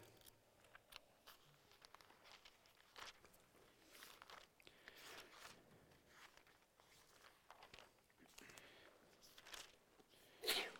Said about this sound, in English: Bless you.